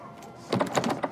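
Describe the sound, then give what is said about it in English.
A door handle is jiggled and rattled several times in quick succession, the latch clunking against a locked door, with no voices. “It's locked.”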